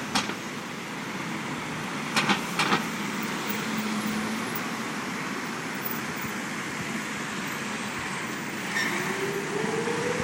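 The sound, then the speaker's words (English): Steady roar of city street traffic in Israel on Yom HaShoah (Holocaust Remembrance Day) with cars rolling past, a broad continuous rumble and a couple of sharp clanks early on, no one speaking. “So take a look at the cars.”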